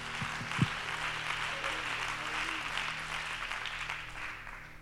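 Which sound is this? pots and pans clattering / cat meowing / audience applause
audience applause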